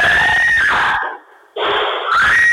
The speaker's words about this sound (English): It'd be really cool if you guys wouldn't tell people I scream like that.